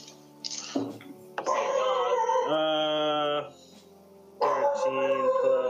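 A dog whines and howls in long, drawn-out, wavering cries, with a sustained loud howl in the middle and another starting near the end, prominent.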